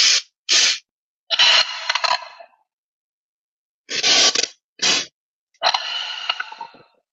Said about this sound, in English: So, taking some deep breaths or doing that physiological sigh, which is, taking a deep breath through the nose and another little like kind of sniff and then exhale, engaging the diaphragm. So it's, it looks like this.